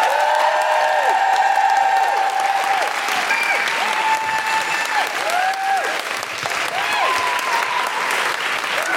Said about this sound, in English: Our next guests are two of the creators of the amazing play The One at Soho Theatre. Please put your hands together and make big guilty feminist noises for the wonderful Vicky Jones and Tuppence Middleton.